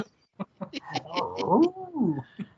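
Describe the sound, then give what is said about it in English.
A person imitates a cow's moo with a high, wavering voice that rises and falls over about a second, preceded by several short, sharp clicks. “That was a cow.”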